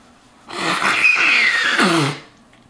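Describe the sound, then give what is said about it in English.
A single loud nose blow lasting under two seconds: a rough, breathy rush of air with a thin whistling squeak through the middle and a low honking finish. No one speaks. “Little nose blow.”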